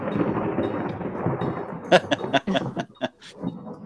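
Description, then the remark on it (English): A thunder and lightning sound effect for a fire lightning bolt from a storm cloud: a deep, rolling rumble builds, then breaks into a series of sharp, crackling strikes that snap loud before fading. “Sounded ominous. Ominous? Oh, it was a fire lightning bolt.”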